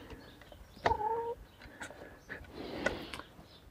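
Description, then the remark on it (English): A chicken gives one short, drawn-out call, followed by quieter clucks, soft scratching and rustling in an otherwise calm outdoor setting, as two pet chickens, Louise and Gloria, are let out in the morning and Gloria eats corn. “There, both chickens are out.”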